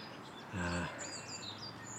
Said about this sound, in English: Actually good numbers of birds today.